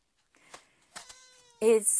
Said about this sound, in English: Kitten saying hi now too.